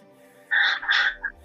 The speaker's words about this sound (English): Guys, the goose. But I have a live bird here if anybody needs to talk to a bird.